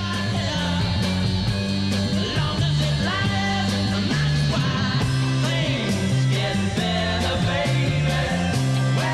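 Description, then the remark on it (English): A rock song at a steady, loud level, driven by a thin, buzzing distorted electric guitar over a pulsing bass line and drums, with dense harmonic layers throughout. “but that distorted guitar just has like no balls.”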